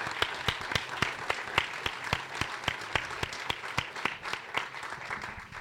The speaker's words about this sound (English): So I'd like to thank them and give them a round of applause.